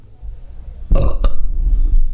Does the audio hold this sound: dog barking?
no